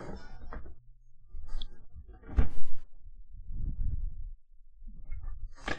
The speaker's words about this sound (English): Don't mind me. Just cat scratching at the door.